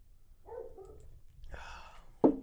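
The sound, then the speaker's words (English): A female dog gives a few short, muffled barks, ending with one sharper, louder bark, with no talking over them. “I might piss on your dog because she's barking all the time.”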